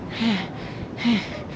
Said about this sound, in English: Stop that breathing now. We've work to do.